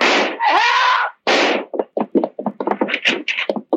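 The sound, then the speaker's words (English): Gunshots that shoot a man to death: two long rushing blasts of noise, then a rapid, irregular volley of short, sharp cracks of varying pitch, loud and with no voices. “He's just been shot to death.”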